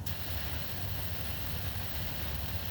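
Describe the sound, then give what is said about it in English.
Heavy rain that came on suddenly drums steadily on a car windshield while driving, a continuous dense hiss layered over a deep, rumbling road drone, with no voices and no break for the whole stretch. “That's just the rain off the windshield.”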